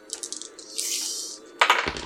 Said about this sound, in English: Dice.